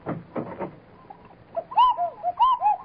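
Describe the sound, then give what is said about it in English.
A doorbell at the door of a club chimes with a cuckoo-call tune: two-note "cuck-oo" phrases sounded twice, clear, following a few dull thumps at the start. “Well, what was that? Oh, the doorbell.”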